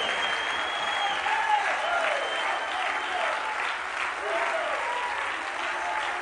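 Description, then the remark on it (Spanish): An audience claps steadily in worship, a dense, continuous wash of many hands applauding at full volume for several seconds, with faint voices mixed underneath. “Él sí es digno de que usted derrame unas cuantas gotas de sudor, aplaudiendo sus manos y saltando un poquito.”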